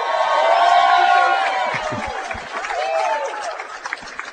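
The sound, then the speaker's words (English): A live audience roars with cheers and high whoops, loud and sustained at first, then easing into scattered shouts and claps as the noise settles. “Wow, great crowd tonight. You bring out a crowd, my friend.”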